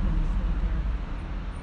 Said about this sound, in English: Well, the traffic is slow outside the Metropolitan Transportation Commission offices on Beale Street, but I did make it by 9:34.